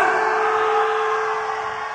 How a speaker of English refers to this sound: Now, in the middle of the song, we ask the audience to scream as if you're in hell. This is your sound check. Please, ladies and gentlemen, don't be shy. Scream as if you're in hell!